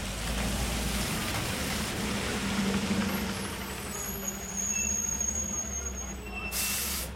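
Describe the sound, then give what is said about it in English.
Busy outdoor bus depot ambience in Dudley Square, Boston, operated by the Massachusetts Bay Transportation Authority, with idling heavy engines, a steady low rumble and a hiss of air brakes near the end, with faint voices. “This is Dudley Square, an historic inner-city neighborhood in Boston. A large outdoor bus depot here is operated by the Massachusetts Bay Transportation Authority, known to everyone as the T.”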